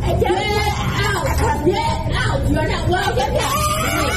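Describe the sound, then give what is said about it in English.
A woman customer screams and yells in a heated confrontation with employees at a Domino's, her raised voice strained and continuous over several seconds, with other agitated voices and a noisy, crowded background. “That scream was from the customer, and the employee responds with, "You're a fucking lightweight.”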